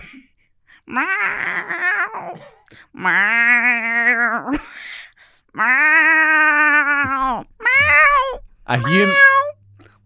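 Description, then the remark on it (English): A person imitates a cat with five drawn-out, wavering meows in a row, each loud and separated by short pauses; the calls rise and bend in pitch like a plaintive cat. “They're quite good meows.”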